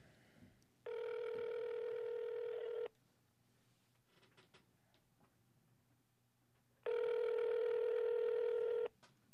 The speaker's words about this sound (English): Should I get him on the phone? Yeah, let's dial him up.